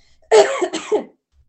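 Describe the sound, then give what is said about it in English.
Someone clears their throat, a loud rasping rumble in two quick pushes lasting under a second, with silence before and after and no talking. “And sorry, I've got to clear my throat.”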